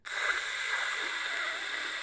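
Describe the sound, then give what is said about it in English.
A hand air dryer at a live wrestling event, its button held down by someone sitting on it, blows continuously, a steady, loud, hissing rush of air with no breaks or changes in pitch for the whole stretch, and no voices. “Someone sat on the air dryer button, and it's the whole time you just hear...”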